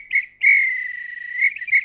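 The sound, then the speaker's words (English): A referee's whistle at the end of a football match after Haaland scored in extra time: a short toot, then one long sustained blast, then two quick chirps at the end, loud, with no voices. “This is when the referee blew the whistle because Haaland has scored and it's finished.”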